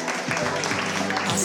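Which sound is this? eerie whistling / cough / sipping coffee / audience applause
audience applause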